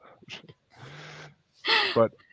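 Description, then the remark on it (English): Close, raspy snoring from a dog: a long rumbling inhale followed by a louder, snorting breath, with faint snuffles between. “And my dog is snoring in my ear.”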